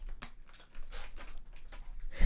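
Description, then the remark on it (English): A plastic pet treat bag crinkles in several quick, irregular bursts of rustling, fairly soft, ending with a louder crunchy handling noise, as a treat is given to Buttercup; no one speaks. “I just want everyone to know I'm giving Buttercup a treat. I just don't want anyone to hear that rustling of a bag.”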